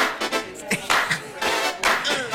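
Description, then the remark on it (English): A crowd claps their hands in a loose, steady rhythm, the sharp overlapping claps forming a bright, moderately loud patter with no talking over it. “Everybody else just clap, clap your hands.”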